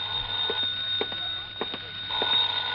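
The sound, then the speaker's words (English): A telephone rings: a steady, high-pitched bell tone carries throughout, with brisk rattling clicks pulsing at a regular rhythm. No one speaks. “Then I packed a bag, was about to take off, when the phone rang again.”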